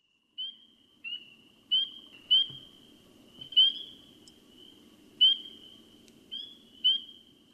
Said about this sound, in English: Peepers are very difficult to see in the aquatic vegetation, but their calls surely indicate that spring is on its way.